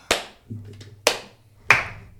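Three sharp, crisp hand claps made to synchronize a recording, unevenly spaced over about two seconds, each a loud bright snap that decays quickly, with a low faint hum between them and no talking.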